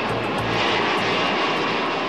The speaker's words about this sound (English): It is May 31st, 2009. Air France Flight 447 prepares to depart Rio de Janeiro. 7:30 p.m., takeoff.